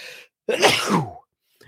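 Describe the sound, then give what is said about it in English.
One loud sneeze bursts out after a brief breathy intake, trailing off in a voiced tail, then quiet with a faint breath at the end. “I'm going to sneeze.”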